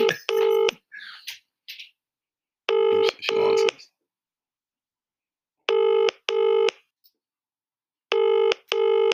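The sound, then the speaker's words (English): A telephone rings in repeated double bursts, four rings spaced a few seconds apart, clear, with nobody picking up and only faint background noise between rings. “People don't answer their phones how they used to answer their phones.”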